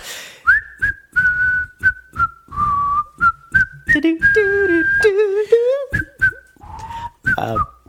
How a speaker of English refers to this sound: My dad has restless whistling syndrome. Yeah. So if he's just like, you know, pouring himself a drink or walking to another room, he's whistling. And 8 times out of 10, It's fucking Red River Valley.